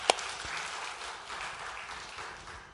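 A crowd applauds in a steady, dense wash of clapping, with one sharp, bright click at the very start. The clapping holds at an even, moderate level and tapers slightly toward the end.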